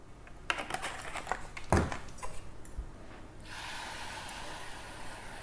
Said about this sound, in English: Okay, you hear it sizzling a bit. That's because the butter is hot. But you're just gonna stir that mixture all together. Put it over quite low heat here.